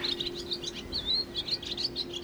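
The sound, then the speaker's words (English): Small birds, finches and sparrows, chirp and twitter in a garden in quick, overlapping bursts of high-pitched notes, steady throughout, over a low constant hum. “Cormorants, egrets, and just here on the garden, we have finches and sparrows.”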